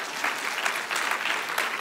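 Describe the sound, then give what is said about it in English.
An audience claps steadily in a dense, even wash of many hands, with no voices standing out, sustained for about two seconds, in response to an announcement about going out to pray over 22 school campuses on Wednesday night. “So now I got you, okay? Because you all clapped.”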